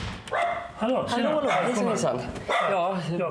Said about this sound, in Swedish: Det är hunden Bella som skäller.